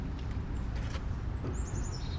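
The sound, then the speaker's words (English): A bird chirps outdoors near a window, seeing its own reflection: one brief high tweet, then a quick run of rapid, thin chirps, fairly faint over a steady low background rumble, with no one talking. “But, like, there's this bird. And it keeps, like, there's, like, a window near us. We're outside.”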